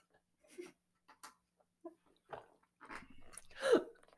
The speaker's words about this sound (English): So this might take 5 minutes to chew at. I'm going to use the other side of my mouth.